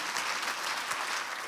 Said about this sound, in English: Would you guys give him a big hand clap as he comes to speak to us this morning?